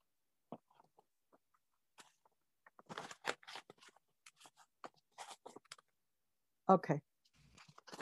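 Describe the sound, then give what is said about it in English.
Intermittent rustling and crinkling of paper as sheets are shuffled and flipped while someone searches for a missing sheet, with scattered clicks and a louder burst of handling near the end. “I'm missing a paper. Let's see, it's in this one.”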